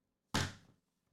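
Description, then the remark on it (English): A single heavy thump against a door, the speaker's mother knocking, sharp and loud at first, then ringing down over about half a second, with no voices around it. “My mother's at the door.”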